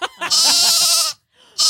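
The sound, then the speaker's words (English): A sheep bleats loudly, one long quavering baa followed after a brief pause by the start of another, with no voices present. “I said, it's sheep for me, bro. Sheep for me, dude. Sheep for me.”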